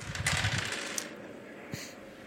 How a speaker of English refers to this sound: Throwing my dice. That's what they're there for.